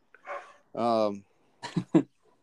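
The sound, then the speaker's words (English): A neighbor's dog barks a few times at moderate volume as another dog walks by, one longer, drawn-out bark followed by two short, sharp ones, with brief pauses between them. “Neighbor's dog's going on off crazy.”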